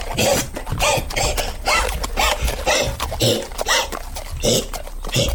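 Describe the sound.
A voice imitates Tony, a horse, wheezing and coughing as if choking on something as riders ride away from a courthouse: a rapid, rough series of raspy, breathy bursts repeating for several seconds, loud, with no talking.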